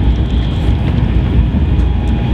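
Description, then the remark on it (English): Steady, loud low-frequency rumble inside a Virgin Trains train carriage while a cup of coffee is being made, with faint tonal hums riding above it, like the constant drone of a moving carriage. No voices are heard. “I think it's the best cup of coffee I shall have on a Virgin Trains this year.”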